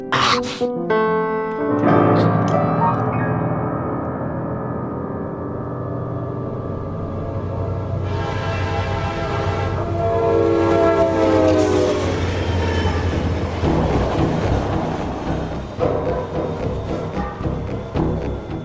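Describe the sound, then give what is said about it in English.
A train clatters steadily along the tracks with a loud, continuous rumble, while long, tonal horn blasts rise and fall over it. No one speaks. “We burn fires to lay our tracks, and on with speed, clickety-clack, we go.”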